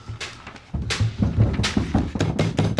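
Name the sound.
banging on a door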